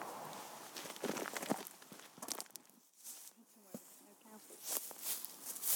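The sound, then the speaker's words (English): Footsteps walking outdoors down a hill over crunchy, uneven ground as the sun goes behind a cloud, moderately loud, with a steady but irregular pace that briefly pauses midway before resuming. “The sun has just taken a little moment behind a cloud, but I think we'll walk a little bit further down and maybe it'll burst upon us again.”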